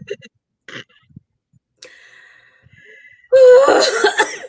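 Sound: coughing fit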